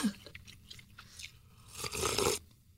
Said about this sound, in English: I love how you're eating. Do you see? Do you hear how she's eating? That's how you're supposed to eat Korean food.